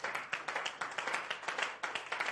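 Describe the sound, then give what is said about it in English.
An audience clapping together in a steady, rapid rhythm, many hands producing sharp, bright slaps that blend into a continuous, lively patter at moderate volume with no voices. “If you are clapping, it's free.”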